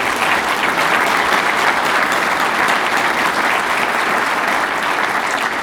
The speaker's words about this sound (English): Let's give her and the whole team, the board, a big round of applause, please.